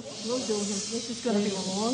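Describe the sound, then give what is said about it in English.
A steady, loud rush of air hisses continuously as a human-sized inflatable monkey holding a banana is being inflated, while a voice murmurs faintly underneath throughout. “So I'm not sure why they were inflating a human-sized monkey holding a banana.”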